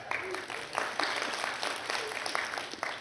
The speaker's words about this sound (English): I know the roads are a little off today, but give our online audience a big cheer there.